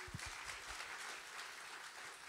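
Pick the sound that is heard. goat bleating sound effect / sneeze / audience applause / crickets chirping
audience applause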